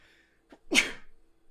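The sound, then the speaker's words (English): A single sharp sneeze bursts out, preceded by a quick intake of breath, then fades into quiet breathing. “Excuse me. Bless you.”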